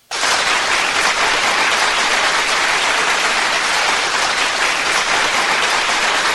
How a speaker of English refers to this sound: Hold on, I know I do have applause. Let me get that shit.